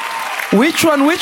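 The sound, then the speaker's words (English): An audience claps for the Lord Jesus in a steady, dense wash of applause, with voices calling out and cheering over it partway through. “Clap for the Lord Jesus.”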